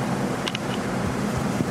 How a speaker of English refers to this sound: Engines are starting. Oh, no. Other cars are going down the ramp, not us.